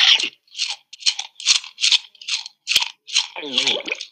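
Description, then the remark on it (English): The wolf from Little Red Riding Hood gobbling up Granny: about nine loud, wet crunching bites in a steady chewing rhythm, ending with a throaty, growling gulp mixed into the final crunches. “Poor granny did not have enough time to say another word before the wolf gobbled her up.”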